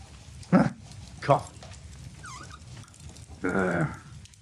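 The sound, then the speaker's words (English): A voice imitates a growl: two short, rough bursts, a brief pause, then a longer, louder drawn-out growl, with faint background noise throughout. “You just hear him growl, and then you can hear like his footsteps in the distance.”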